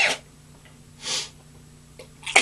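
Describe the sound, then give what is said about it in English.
A couple of hissy, breathy intakes build up before a sudden sneeze bursts out at the very end, with no talking. “and I'm going to sneeze.”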